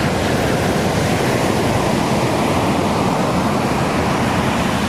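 Steady, loud rush of ocean water as someone jumps off a boat into the ocean, a dense hissing wash of surf with no distinct splash or break, continuous with no voices.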